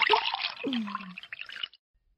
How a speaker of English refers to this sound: You betcha, the extra anillo, aged a minimum of 3 years in oak barrels. This one aged 6 years. Oh, smooth. Yes, Mama pours some of this baby over the shrimp, and you got yourself a little fiesta going on in your mouth.